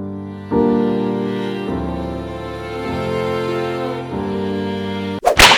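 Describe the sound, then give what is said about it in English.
Sustained harmonica chords shift several times, then cut off abruptly as a sharp, loud slap on the buttocks lands near the end, followed by a short rustle. “And he gives you a sentimental slap on the tuchus.”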